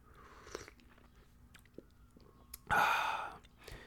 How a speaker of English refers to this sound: So, you know, a little sip of tea from now and again. You know, don't hurt nobody.